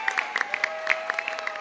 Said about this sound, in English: I want to recognize the leaders of the Erie County Democratic Party, the Working Families Party, the Women's Equality Party, and the Independence Party for your support. Let's give them all a great big round of applause.